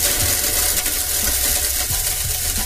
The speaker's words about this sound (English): Wait a minute. The blender was rusty. It was like, I ain't put in no work in a minute.